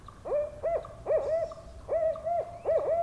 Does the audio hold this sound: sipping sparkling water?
no